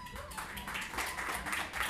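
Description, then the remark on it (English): Sparse, uneven clapping from a handful of people, about five, in a small crowd at the Idaho Pun Slam, a light patter of hand claps that holds steady for a couple of seconds without any voices over it. “So how many of you, by round of applause, please, because I can't see anything, how many of you have never been to an Idaho Pun Slam?”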